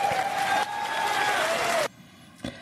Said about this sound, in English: So the repeatedly calling him a liberal and dropping the cancel culture bomb and like the cheers and the jeers, it's weird. I don't know how I feel about it.